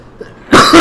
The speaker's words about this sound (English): Excuse me again, bear with me. I'm battling the end of a cold. I'm coughing up a lung, I swear.